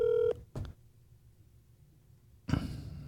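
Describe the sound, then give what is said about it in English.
A short electronic telephone tone sounds at the start as someone places a phone call to a man, then a brief click, a stretch of quiet line hiss, and another sudden burst of noise near the end, with no voices. “What are the odds that he answers the phone?”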